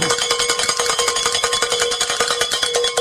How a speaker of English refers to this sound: And those two donations got us over the top and allowed us to ring the bell from...